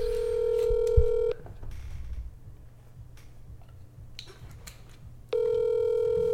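An outgoing phone call rings out: a loud, steady electronic ring tone sounds, stops, then returns after about four seconds of near silence, with a small click early on.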